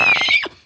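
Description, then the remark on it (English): A voice tries to imitate a cicada with one short, shrill, trembling screech that wavers and then drops in pitch before cutting off, sounding more like a whinny than an insect buzz. “I can do a Katie Holmes impression, but I can't do a cicada sound.”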